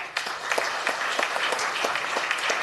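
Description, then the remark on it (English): A crowd applauds the first-place winner at a prize announcement, a dense wash of many hands with sharper individual claps standing out at a fairly even, rapid rhythm, sustained at moderate loudness with no voices. “Please, everybody, give him a round of applause.”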